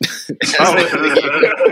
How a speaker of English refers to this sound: gonna cough on you